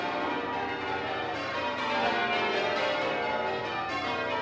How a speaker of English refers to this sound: And we end with, again, the bells ringing from the highest note to the lowest. Again, it becomes much more easy to realise that there are 12 bells ringing. And that set of changes has been resolved.